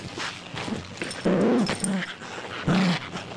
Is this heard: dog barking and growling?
yes